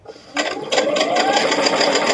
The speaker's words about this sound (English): Armed with a steady hand and a sewing machine,